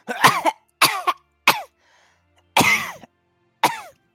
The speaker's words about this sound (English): I start coughing up blood.